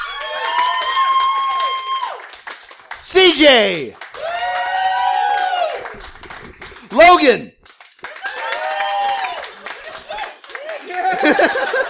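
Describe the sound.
A crowd cheers and claps in waves, with sustained vocal whoops and a couple of sharp rising shouts over moderate, broken applause, while voices speak briefly in between.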